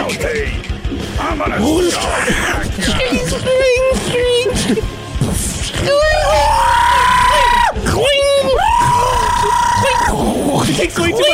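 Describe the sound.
A voice mimics a man screaming: loud, drawn-out wails that rise and hold their pitch, coming in several bursts over a cluttered, noisy background.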